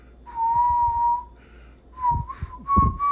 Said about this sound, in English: Firstly, I'd like to relitigate my whistling because I was able to whistle. Not very good.